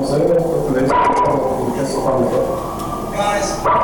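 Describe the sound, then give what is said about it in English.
A dog barks amid a noisy, crowded scene, with people shouting and general commotion filling the background throughout, recorded on a cell phone video taken from a bird's eye view. “You can hear people shouting, a dog barking, then sirens approaching.”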